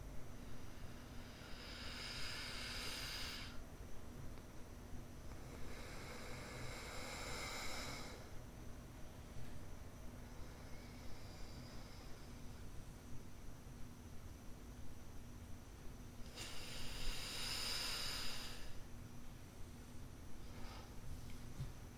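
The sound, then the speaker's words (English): Slow nasal breathing during an alternate nostril breathing exercise: airy inhales and exhales through one nostril at a time, each lasting a few seconds, with long pauses between breaths and no talking. “Inhale, up left, down right, up right, down left at your own pace.”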